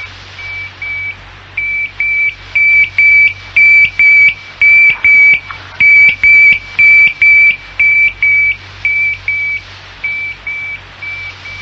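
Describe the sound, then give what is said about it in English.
A radio tracking receiver with a 20-mile range beeps steadily, a long run of evenly spaced, high-pitched electronic tones over a low, constant hum. The beeps are loud and regular, and no one speaks. “Outside the range of your receiver soon.”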